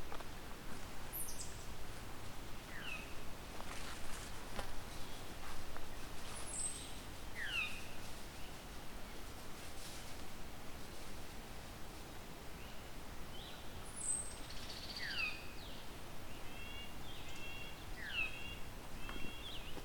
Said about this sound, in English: Okay, I'm hearing a Veery, yo. And a Veery. The Veery sounding very sweet.